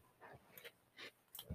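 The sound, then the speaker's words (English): A large 95-pound dog named Lewis breathes heavily right in front of a microphone, with four or five loud, breathy puffs in an uneven rhythm and no voices. “So sorry, I am wrestling my 95-pound dog onto my lap to get him to not breathe into the mic.”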